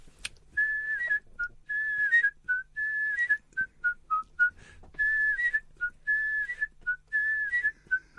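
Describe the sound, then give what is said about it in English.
The theme tune of the TV programme the Live Birds is whistled solo, clear: a bright string of short and sustained notes with little slides between them, in quick phrases and pauses, with no talking. “That's the whistle.”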